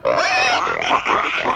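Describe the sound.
A pig grunts and oinks loudly, a continuous burst of squealy, nasal snorts lasting a second and a half, with no talking.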